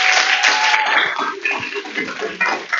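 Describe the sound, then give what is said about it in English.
An audience at a Beacon Church gathering breaks into applause, a dense, steady wash of clapping hands with some faint voices mixed in, holding at a fairly loud level for the whole stretch. “So why don't we give them a round of applause.”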